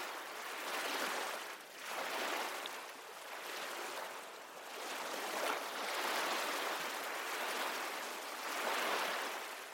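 Ocean waves wash in steady, rolling surges, a broad hiss of surf swelling and fading every couple of seconds, continuous with no voices.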